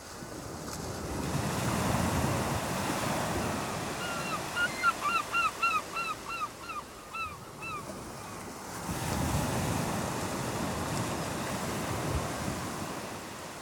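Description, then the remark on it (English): Ocean waves break on a shore in broad, rushing surges, swelling, easing off, then building again, with a run of short, bright bird calls chirping over the lull in between. “I'm literally looking at the waves as I am recording this right now.”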